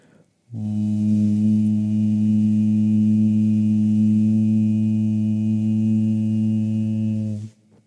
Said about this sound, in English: And just layering that hum now with that exhale that we were doing before, the long, light exhale with the mouth closed.